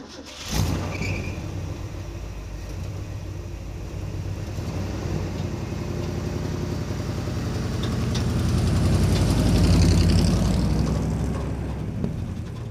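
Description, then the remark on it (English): An old ramp truck engine with a 4-speed manual transmission cranks and catches, then settles into a low, rumbling idle that swells into a louder rev near the end before easing back, with no talking. “Ran when parked, and it actually does run, mostly.”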